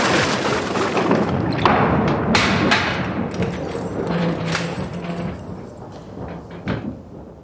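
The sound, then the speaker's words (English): Several sharp, irregular knocks on the wooden door of a converted abbey, with a pair of quick raps near the end, heard over a steady wash of background noise. “You booked it? Aye, so you chap it.”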